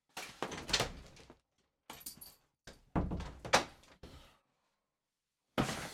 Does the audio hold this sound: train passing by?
no